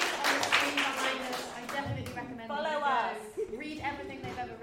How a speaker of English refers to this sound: Thank you very much. If we could have a massive round of applause for all of our panelists. Thank you for coming.